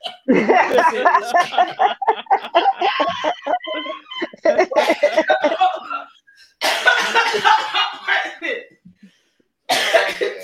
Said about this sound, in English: Feel so bad we made you cough.